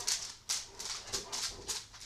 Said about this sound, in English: Oh, here come dogs. Just barreling in.